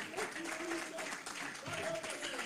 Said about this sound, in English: Oh, give God a great big hand clap for about 10 seconds. Hallelujah.